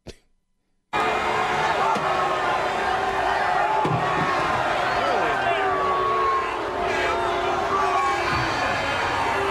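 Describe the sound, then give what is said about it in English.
After a brief silence, a large crowd erupts into loud, sustained booing of Senator Cruz, a dense, continuous roar with scattered shouts and voices rising through it. “He got booed, and then the can flew through the air.”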